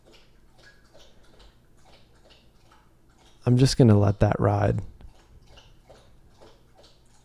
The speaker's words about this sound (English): And also cool, Lucia is drinking water like a horse. I'm sure you guys can hear that.